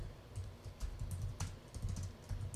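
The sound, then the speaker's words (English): Rapid, uneven clicking of keys on a computer keyboard, with a low background hum and no talking. “You can hear my typing.”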